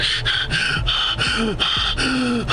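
A young woman gasps for breath in a rapid run of loud, harsh, breathy pulls, continuous, with no talking.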